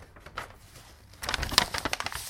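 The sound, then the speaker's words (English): A Christmas cracker is pulled: soft paper rustling builds into a burst of crinkling and crackling, topped by one sharp snap midway, followed by a few quicker crackles. “You've got your cracker there, haven't you? Are you going to pull that one?”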